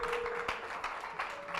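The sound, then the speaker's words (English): A crowd claps together in a dense, steady patter as a choir comes forward to sing, moderately loud and continuous, with a faint tonal hum underneath and no clear voices. “Don't stop clapping till they get here.”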